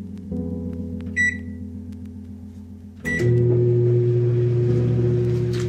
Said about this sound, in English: Roaches in the little microwave. I should just turn the microwave on. That'll fix that problem.